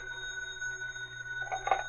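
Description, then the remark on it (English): A telephone rings for Professor Lowell with a steady, bright bell tone that holds for a couple of seconds, growing a bit busier and louder near the end, heard alone without any voices. “Meanwhile, Professor Lowell also received a phone call.”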